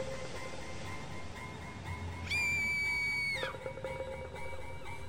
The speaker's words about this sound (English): Lily's screaming voice chilled me to the bone. I glanced over my shoulder to see her being lifted by a waterspout.